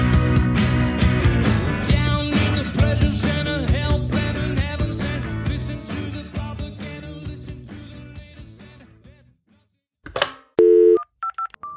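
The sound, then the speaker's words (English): Busy music fades away, then after a short pause a quick run of loud telephone dialing tones beeps alone, several brief keypad notes in a row, placing a call on the Big Ass Runner hotline. “Phone's ringing, dude.”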